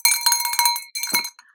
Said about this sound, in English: For extra measure, I'll take my apotropaic bell with me as well. Just, nice. You know, for extra measure. Double whammy.